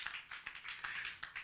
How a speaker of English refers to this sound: Give God a clap of offering.